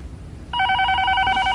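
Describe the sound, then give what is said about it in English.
A telephone starts ringing abruptly partway through, a bright, trilling electronic ring that sounds steadily and fairly loud over a quiet background, with no voices. “Don't answer the phone! We learned this lesson!”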